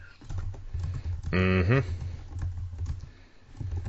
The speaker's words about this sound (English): I hear you typing away over there.